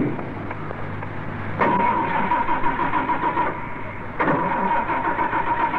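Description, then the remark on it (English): A car engine cranks repeatedly without catching, a rhythmic grinding churn that surges twice as the starter is tried again, loud with no one speaking. “Do you ever get into your car and have this happen?”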